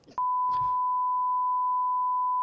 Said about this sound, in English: Hey, hit the beep sound. What the? Yeah, just the beep. Just the, like you bleeping words and shit.